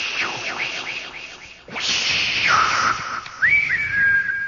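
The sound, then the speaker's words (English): A loud, piercing human whistle from a mother calling her son: a few quick swooping chirps, then long shrill whistled notes that slide down, hold, and rise again, ringing out over faint background noise. “And 85 kids say, "Hey, your old lady's whistling."”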